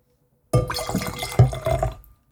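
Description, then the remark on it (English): Liquid pours steadily into a glass for about a second and a half, a gurgling splash with a faint clink partway through, no voices. “May I partake in a small glass myself? Ah, yes, allow me to pour you some.”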